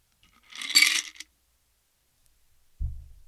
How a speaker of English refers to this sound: Pour out your ice from your glass. Set your glass down. Open the top of your shaker and pour your libation into your glass.